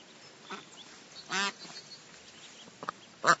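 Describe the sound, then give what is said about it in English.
A black-and-white mother duck and her little yellow-flecked black ducklings quack a few scattered times outdoors while eating, with one loud, raspy quack in the middle and a thinner, higher duckling call near the end, over a soft background hiss. “There are some ducks and little ducklings.”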